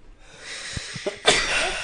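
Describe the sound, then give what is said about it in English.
A single loud sneeze: a few short catching breaths build up, then a sharp, hissy burst of air that trails off. No talking. “Bless you.”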